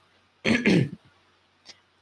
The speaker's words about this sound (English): He just sort of coughs and brushes himself.